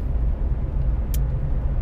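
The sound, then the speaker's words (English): The Oscar Mayer wiener truck, a large hot-dog-shaped promotional truck, rolls by, its engine a steady, heavy low rumble, with one brief sharp hiss partway through, like an air brake releasing. “The Oscar Mayer wiener truck! What the hell is that?”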